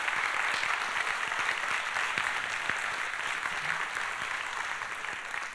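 Sustained applause from a crowd indoors, steady dense clapping filling the whole stretch at a fairly even level, with no one speaking over it.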